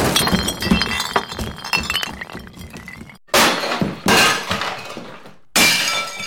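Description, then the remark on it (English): Soldiers smashing tables and chairs in an inn: a clattering run of breaking and splintering, then three loud, abrupt crashes a moment apart, forceful, with no voices. “Then they broke the tables and the chairs.”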